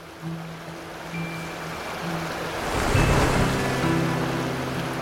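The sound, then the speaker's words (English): A steady, broad roar of rushing water pours continuously from the opened gates of the Morelos Dam on the Colorado River at the U.S.-Mexico border during the 2014 pulse flow, swelling louder partway through, with faint low hums and tones beneath the churning flow. “We all went to Presa Morelos in order to see how the gates were open and the water flowed downstream.”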